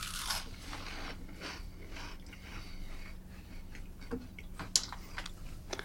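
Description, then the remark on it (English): Crunching as someone bites into a fried vegetable fritter with onion, cabbage and prawn, a run of crisp, crackly bursts and small snaps with a few sharper clicks near the end, no talking. “Alright, I'm moving away for a crunch.”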